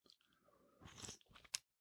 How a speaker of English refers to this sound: I take a sip. This is today's coffee at 140 degrees. Oh my Lord.